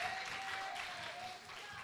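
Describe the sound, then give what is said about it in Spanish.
A church audience applauds steadily, giving a loud round of applause to the Father, the Son and the Holy Spirit: a dense wash of many hands clapping at once, sustained and fairly loud throughout, with a faint tone ringing underneath. “Vamos a regalar un fuerte aplauso al Padre, al Hijo y al Espíritu Santo.”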